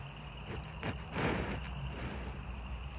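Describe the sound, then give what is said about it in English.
A cow sniffs into the microphone, giving two or three short, breathy bursts of rushing air over a low, steady background hum, with no talking. “I was trying to get a little cow sniff on the mic.”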